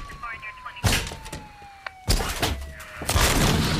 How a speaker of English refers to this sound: you're going to have to tear this door down.